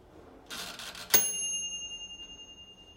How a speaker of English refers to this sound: But anyway, we're going to have the chime of my friend's microwave oven at his apartment.